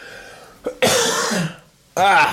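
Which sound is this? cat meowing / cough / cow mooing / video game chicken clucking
cough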